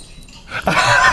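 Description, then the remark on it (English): A family labradoodle in a played video lets out a short, fairly loud vocal burst about halfway through, after a quiet, faintly rustling lead-in. It plays alone, with no talking. “This is the family labradoodle.”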